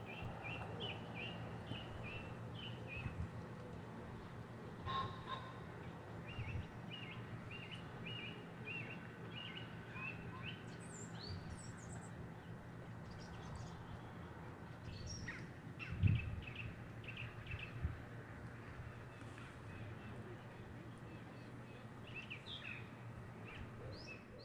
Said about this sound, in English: I'm going to take you into the woods now with my outside broadcast recorder. So I hope you enjoy this. It's just bird song and things in the woods. Have a quick listen.